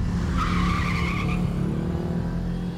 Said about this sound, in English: With the witnesses taken care of, Donald loaded Margaret into his car, sped out of the garage, and disappeared.